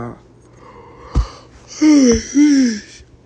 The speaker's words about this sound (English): I apologize for my yawning.